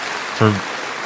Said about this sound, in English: Standing ovation